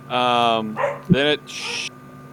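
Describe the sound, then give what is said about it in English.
Dogs bark in a short burst: a drawn-out yelping bark, then a couple of quicker barks and a rough huff, fairly loud against a quiet background. “Then it became that the wife is home and the dogs are barking.”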